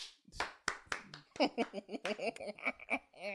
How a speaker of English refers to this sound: We forgot to clap. Oh.